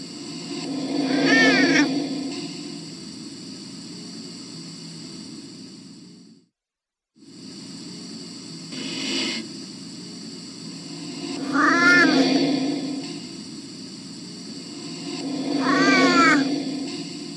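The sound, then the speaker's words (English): A cat meows repeatedly in drawn-out, wavering cries, about four of them spaced several seconds apart, over a steady low hum and high-pitched background tone, with a brief dropout midway. “Huff posted a video on his YouTube channel that appears to show that he made contact with Grumpy Cat from the other side.”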